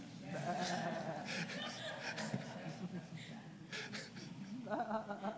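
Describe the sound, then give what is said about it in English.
A crowd of people imitating sheep, bleating "baa" at their neighbors, a chorus of overlapping voiced bleats mixed with laughter and chatter for several seconds. “We are His people and the sheep of His pasture. Yeah. Look at your neighbor and go, bah.”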